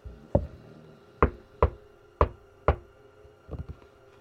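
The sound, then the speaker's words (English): Loud, hollow knocks on a slightly open wooden door at the end of a hallway, five firm raps spaced unevenly, followed by a quick flurry of lighter taps at the end. No one speaks. “Have you knocked louder?”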